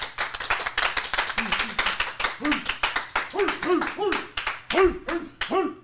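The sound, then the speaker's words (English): A round of applause with dense, rapid clapping that fills the whole stretch, joined by whoops and cheering voices rising and falling over the claps. “Round of applause, please.”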